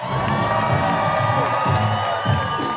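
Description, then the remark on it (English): A large crowd cheers loudly and continuously for five judges coming on stage, with whoops and shouts rising over a dense wash of applause, sustained throughout. “Give it up for all your judges.”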